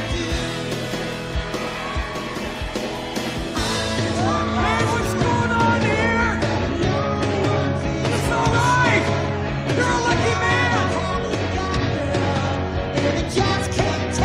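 A recorded song plays steadily at full volume, with a melodic singing voice soaring over a dense, continuous band backing for the whole stretch.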